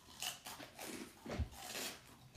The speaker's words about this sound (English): All right, I had water, I'm having a Funyun